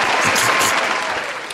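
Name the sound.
applause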